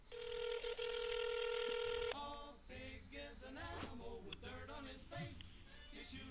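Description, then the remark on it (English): A phone rings over a speakerphone held with its speaker near a microphone: one steady, buzzy ring tone lasting about two seconds, then it cuts off and a voice starts talking over the line. “so I thought I'd phone you.”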